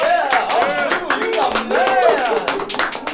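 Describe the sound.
A crowd applauds with steady, dense clapping, mixed with several voices cheering and whooping over it for the whole few seconds.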